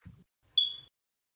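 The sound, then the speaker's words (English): A single high electronic beep from a television, steady and tonal, lasting about a third of a second, heard in the background after a brief low murmur. “That's my TV in the background.”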